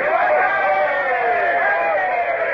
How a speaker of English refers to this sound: Now, all up the side together and give a cheer. I want them to think we're a big boarding party. Ready? Now.